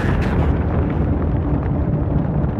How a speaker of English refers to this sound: Yeah, there are 75 men around our building, and they're shooting at us in Mount Carmel. Mount Carmel? Yeah, tell them there are children and women in here and to call it off. All right. Hello? I hear gunfire.